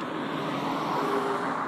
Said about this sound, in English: That truck almost jackknifed in the middle of traffic. If you don't slow the fuck down turning these goddamn corners, man.